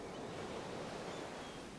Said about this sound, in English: I would drive down to Galveston, to the beach, and walk along the ocean. I couldn't explain why, but the waves comforted me. The sea air, the sound of the surf hitting the shore, even the crying of the gulls soothed me.